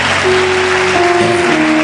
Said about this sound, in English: Those in front, don't clap. Those at the back, you alone clap. I still see some people who are not clapping at the back.